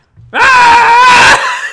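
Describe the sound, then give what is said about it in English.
A voice imitates a child standing in the middle of a road screaming at a driver: one loud, sustained, strained cry lasting about a second, with no other talk around it. “And so I'm driving through, and I'm kind of going through some of the neighborhoods, and out comes a child and stands in the middle of the road. And he then starts screaming at me.”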